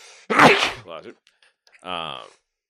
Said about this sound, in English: I got to sneeze.